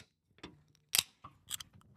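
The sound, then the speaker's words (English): A drink can is cracked open into a microphone: a faint tap, then a sharp metallic pop followed by a short burst of fizzing hiss and a few soft clicks, with no voices. “I'm going to crack it open into the mic.”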